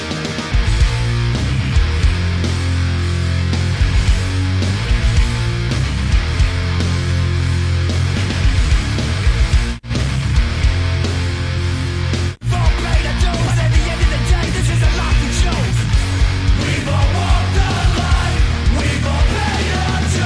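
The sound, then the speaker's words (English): A loud, dense punk rock song plays throughout with driving full-band instrumentation and faint shouted vocals, broken by two brief dropouts partway through. “I would actually say that was more punk than the rest.”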